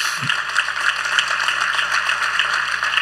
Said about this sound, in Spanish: ¿Por qué no les damos un aplauso una vez más?